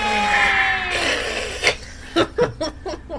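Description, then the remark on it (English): A loud, sustained high-pitched whooping cheer rings out for about a second, then breaks into a noisy burst and a run of short, rhythmic laughing or cheering bursts that fade out. “The crowd goes wild!”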